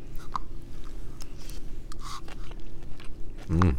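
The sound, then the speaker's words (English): Chewing crunchy sautéed vegetables with soft crunchy bites, steady and intimate, followed by a brief louder burst near the end; no one speaks. “That crunch that's fresh and nice in there.”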